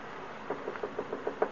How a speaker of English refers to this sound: Did you hear a knock?